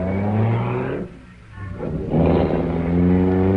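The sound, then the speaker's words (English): A car engine revs hard and loud, dips briefly to a lower idle in the middle, then roars back up into a sustained, throaty rev. No one speaks. “Now, get away from my car before I run you down!”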